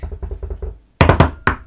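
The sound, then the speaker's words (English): Knocking on wood: a quick run of soft, muffled raps, a brief pause, then several louder, sharper knocks, with no voices. “Knocking on every wooden surface.”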